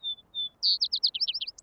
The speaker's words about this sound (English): What I'm doing when I record certain birds in Rocky Mountain National Park that are projected to not live there in the future because of climate change is creating acoustic fossils.